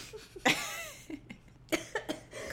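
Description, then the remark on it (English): A person who is feeling sick gives a few harsh coughs in quick succession, one strong burst followed by two shorter clustered ones, with a little throat noise between and no talking. “It makes me cough.”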